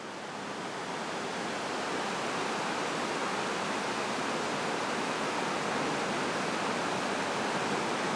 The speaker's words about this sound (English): There's this like competition between the flow of the water, which is usually quite peaceful, and the fact that we're underneath a highway.